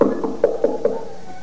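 Three quick, evenly spaced knocks on the door of the house where Cinderella lived, moderately loud, followed by quiet.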